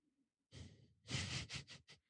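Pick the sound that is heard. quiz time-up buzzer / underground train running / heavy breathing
heavy breathing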